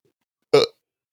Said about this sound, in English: Sorry. That was weak. That was weak. That was more I was like stuck. That sounded more like a barf burp. That's exactly what that was. And I can taste it now.